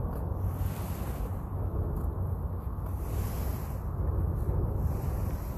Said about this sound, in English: I hope you can hear those waves.